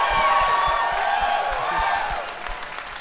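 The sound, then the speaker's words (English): A live audience cheers and whoops loudly at news about the Hellboy reboot, a dense wash of crowd noise with high voices shouting and scattered clapping, sustained for a few seconds before easing slightly. “Yeah, something told me this crowd would like that news, or probably already know that news.”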